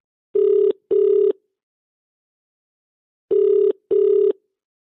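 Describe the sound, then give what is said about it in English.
A phone ringback tone heard while placing a call: two short paired rings, a pause of about two seconds, then another pair, steady and clear with no voices. “I pick up my phone and call Priscilla's sister,”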